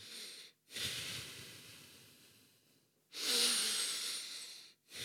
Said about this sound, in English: I'm trying to, like, learn how to, like, activate this higher stage of, you know, consciousness. I'm sitting there breathing and, you know...